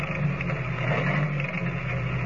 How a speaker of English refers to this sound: Driving the station agent's old car along the winding road, Kent and Lois go on to the Barrow Ranch. With less than a mile to go, the stillness of the night is broken only by the steady chugging of the ancient motor as it struggles laboriously